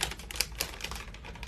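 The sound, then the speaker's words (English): A resealable plastic bag being handled as someone punctures a hole in it to open it without scissors, with a series of sharp crinkly crackles and clicks at an irregular pace. No one speaks. “I'm gonna use this thing right here just to like puncture a hole. It's a resealable bag.”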